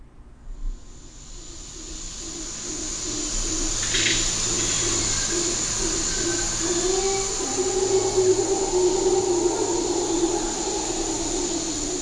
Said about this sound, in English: Late in the afternoon in the Panama tropical forest, the howler monkeys declare their territory for the evening, a counterpoint to the scores of other birds and animals that live here.